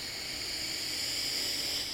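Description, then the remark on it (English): A deep breath drawn in through the nose during a guided breathing exercise: a steady, airy hiss that holds evenly for about two seconds, soft and unbroken, with no talking. “And first, we'll take a deep breath in through the nose if nostril breathing is possible for you.”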